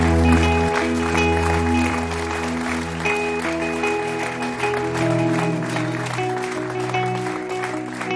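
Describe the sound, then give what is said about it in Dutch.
An audience claps steadily and loudly for several seconds as a clap offering to the Lord during worship, a dense wash of many hands over sustained keyboard or organ chords that play throughout. “Let's give the Lord a clap offering. Laten we God een groot applaus geven.”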